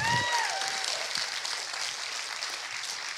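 A crowd claps steadily and densely throughout, with a few high, rising whoops and shouts ringing out over the applause in the first second.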